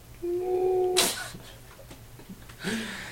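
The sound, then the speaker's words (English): A kitten outside a door meows twice: a long, drawn-out cry ending in a breathy rasp, then a shorter, scratchier meow a moment later. Both are fairly faint, with no talking. “Oh, you poor kitten. Outside all alone.”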